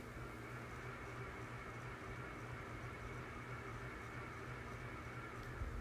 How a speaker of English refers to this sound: That's a ceiling fan, isn't it?